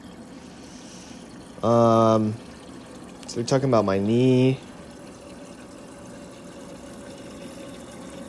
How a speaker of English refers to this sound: Filling up the water in my Keurig.